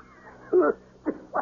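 Three short, harsh coughs in a row, the first fuller and longer, followed by two quicker, sharper bursts with brief pauses between them.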